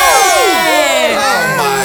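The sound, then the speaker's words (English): A group of voices cheering and whooping together in a green screen room, loud and continuous for about two seconds, with many overlapping high pitched shouts sliding up and down. “I'm not going to cheer if we don't say her name.”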